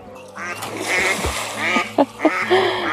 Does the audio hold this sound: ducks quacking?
yes